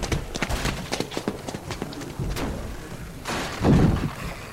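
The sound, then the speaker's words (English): Rapid, irregular heavy thuds of someone pounding on a lobby door with rubble against it, followed by a louder rumbling crash of impacts near the end. “Lobby door! There's rubble against it, and they're still pounding on it!”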